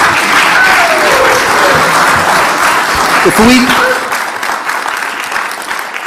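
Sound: audience applause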